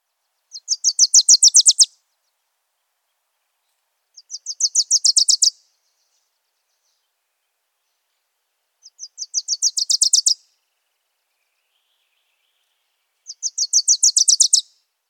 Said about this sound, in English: The overall tone of the Wilson's Warbler is sweet, and the warble is fairly fast. The pitch and speed can change gradually, like an orange-crowned warbler, or sharply.